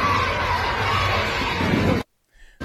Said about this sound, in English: You got Trump just making a huge popular appearance at the UFC, and now you got stadium screaming, let's go, Brandon, again.